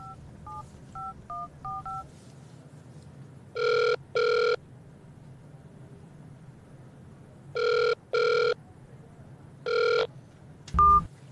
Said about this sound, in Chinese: 我而家打電話揾佢啊。